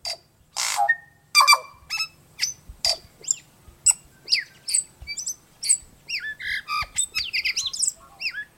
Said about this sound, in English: But the tui is best known for its voice. Each tui's complex song is slightly different, a colorful mix of musical notes and offbeat sounds.